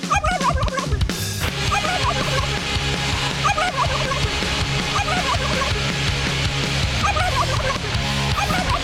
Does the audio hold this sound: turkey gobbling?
yes